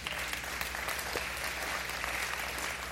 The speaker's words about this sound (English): You can clap for that.